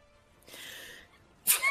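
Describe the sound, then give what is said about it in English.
A single sneeze: a soft breathy intake, then a sharp, loud burst that cuts off quickly, with no talking. “Bless you!”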